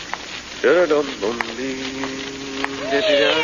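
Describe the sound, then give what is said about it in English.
A cat meows several times on a dark, moonless night: two short rising cries, then a long drawn-out wail that ends on an upward whine, over a faint hissing background. “Hello, kitty. Here, kitty, kitty, kitty, kitty.”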